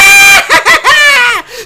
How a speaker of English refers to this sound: Just screaming on top of that pole. I absolutely love it.